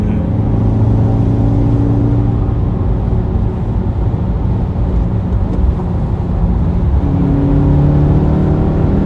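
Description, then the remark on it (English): A car engine revs steadily through long gears, its pitch climbing slowly, easing briefly, then rising again, loud with a constant droning roar and no talking. “I love that sound. They're long gears though, but I'm also used to newer cars.”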